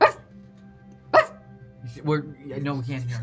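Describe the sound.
A person imitates a barking dog with two short, sharp woofs spaced about a second apart, followed by a run of longer, wavering bark-like yelps, fairly loud.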